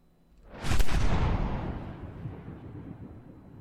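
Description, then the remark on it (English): A single heavy cannon shot fired in the late afternoon booms out and rolls away in a long, rumbling decay, loud at first and fading over several seconds, with no voices. “It's late afternoon when I begin to hear the cannons.”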